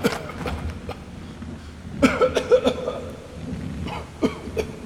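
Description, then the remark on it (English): Several people cough in rough, overlapping bursts after breathing in dust and spores: a tight cluster of hacking coughs near the middle, then a few more scattered coughs toward the end, moderately loud. “The companions had thrown themselves to the ground when the ring had crashed to the floor, and now they shakily picked themselves up, breathing in the dust and spores, and coughing.”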